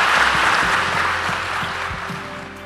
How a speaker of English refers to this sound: Thank you all for sitting up here and sharing and being vulnerable with us with your answers. Can we give a round of applause to our panel?